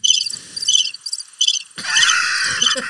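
Crickets chirp in short, rhythmic high-pitched bursts, then swell into a denser, continuous chirring for the last second. No one speaks.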